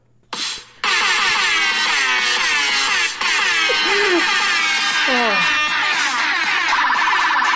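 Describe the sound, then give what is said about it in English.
A blaring, distorted MLG air horn sound honks out the Final Fantasy VII victory theme fanfare, loud and harsh with dense buzzy overtones, repeated bursts and sliding pitches, playing alone after a brief opening blast. “It's the victory theme, but it's only being played by the MLG air horn.”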